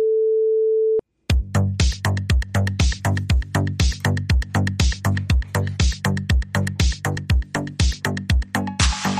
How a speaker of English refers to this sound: So that's what that beep is. That missing information is the Apple, subscription plug.